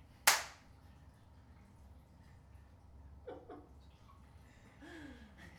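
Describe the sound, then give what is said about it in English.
One sharp, loud hand clap rings out near the start, followed by quiet with only faint background rustling and no talking. “New clap.”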